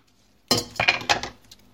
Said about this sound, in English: I'm just chopping the... this broccoli comes with, like, branches and stuff. You know, the ones. So I'm just chopping these weird little branches off. I don't think the branches taste any good.